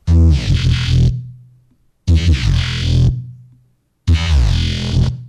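Three loud, distorted guitar chords, played through Guitar Rig amp filters and distortion while the distortion is adjusted as a modulation rate moves, ring out about two seconds apart, each one growling with a shifting, modulated buzz before decaying into silence.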